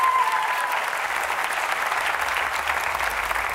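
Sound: church audience applauding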